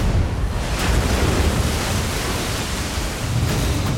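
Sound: rushing wall of water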